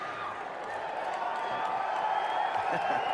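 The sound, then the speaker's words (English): An audience applauding and cheering, a dense, steady wash of clapping and raised voices that holds at an even, fairly loud level for about three seconds without a break. “Because like you know, during these things, you want to keep going, but he just sits there and basks in the applause, the cheering.”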